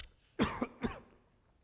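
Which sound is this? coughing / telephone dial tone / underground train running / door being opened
coughing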